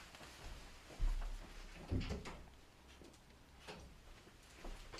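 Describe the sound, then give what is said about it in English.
An office door is opened to let in a small dog that was scratching at it, with two dull thuds and a rattle of the latch, followed by a few soft scuffs and clicks. No one speaks. “I'm just going to go and let my little dog in. He's scratching at the door.”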